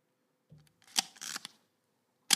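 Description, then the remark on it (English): Mechanical camera shutter clicks: a soft handling rustle, then a sharp click followed by a short whirring burst, and after a brief pause one more crisp shutter snap, with no talking. “And what I mean by that is the moment where you know you have to push the shutter, when's the right time?”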